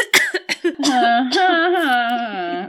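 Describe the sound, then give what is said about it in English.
A few short, sharp throat-clearing bursts, followed by a long, raspy voiced rumble as someone clears their throat. No one speaks. “No, I just wanted to clear my throat when you were done talking so I didn't have to edit.”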